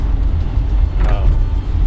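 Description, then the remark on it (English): Steady low road rumble from inside a car driving through rain in dense morning traffic, with one brief whirring windshield wiper sweep midway through. “You may hear some of the rain. You may hear the occasional windshield wiper.”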